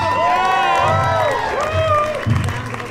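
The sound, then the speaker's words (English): A crowd breaks into applause and cheering, with rising whoops and shouts over steady clapping that stays loud for the whole three seconds. “Round of applause”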